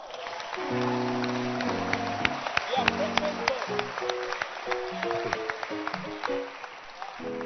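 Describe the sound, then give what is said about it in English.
An audience claps steadily for several seconds, the sharp hand claps scattered and overlapping over sustained keyboard chords that shift in pitch beneath them. “You can clap.”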